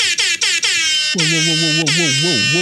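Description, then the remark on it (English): A loud, brassy rap-style air horn sound effect marking an ad break: three quick staccato blasts, then a long sustained blare that wavers and bends in pitch, played alone with no talking. “that rap air horn that Aaron just introduced is the fact that we are having a little ad in between our episode.”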